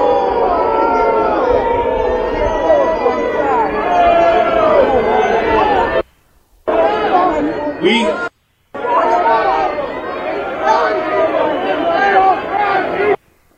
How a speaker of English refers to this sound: His face, by the way, because I could see the video. It was like he was in shock that people would be booing. It was like, whoa, wait, I thought you guys would want to hear that.